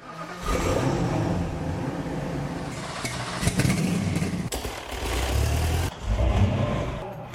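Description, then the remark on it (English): Powerful engines of Jay Leno's cars rev loudly, roaring up and dropping back in repeated bursts with a deep, throaty rumble and a few sharp cracks between revs. “Those are the mating calls from some of Jay Leno's cars.”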